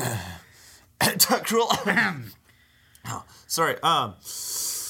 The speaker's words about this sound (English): Sorry, had a bit of a cough there.